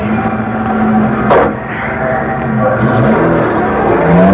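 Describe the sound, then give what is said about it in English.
A getaway car's engine roars steadily and loudly as it drives away from a bank robbery, its low droning tone shifting and climbing as it accelerates, with a brief sharp burst of noise early on and no voices. “Keep driving. I'll watch behind.”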